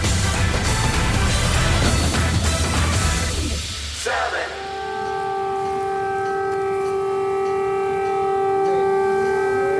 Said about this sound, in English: Air raid sirens rang out across Kiev as Russian President Vladimir Putin began what he described as a special military operation in Ukraine.